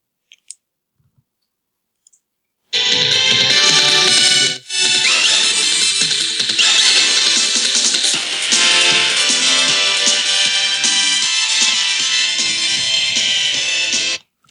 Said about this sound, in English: All right, now I recognize it. It sounds to me like maybe it was a Street Fighter theme for like one of the like where you beat somewhat up the car.